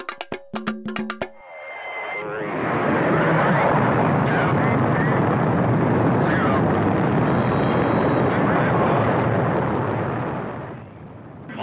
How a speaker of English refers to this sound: Big engines burning clean and hot, pushing the Friendship 7 spacecraft ever faster toward space.